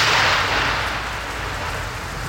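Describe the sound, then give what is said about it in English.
A loud, rolling crack of thunder from a lightning storm roars through a steady hiss like heavy rain, its deep rumble holding for a couple of seconds before easing slightly. No voices are heard. “Remember, whether you're playing or supporting your team, you are in danger from lightning.”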